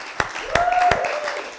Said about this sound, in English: Rabboisai, big round of applause. He's in the house here.